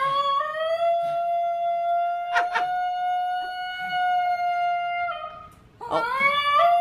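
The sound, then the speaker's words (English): A barkless dog yodels in one long, steady, siren-like howl, loud, with a couple of brief warbling breaks before a final rising wail. “Yodeling dogs! And we also have some yodel sounds for you.”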